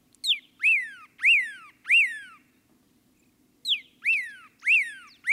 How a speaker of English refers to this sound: And there's a pyraloxia, singing from atop a yucca.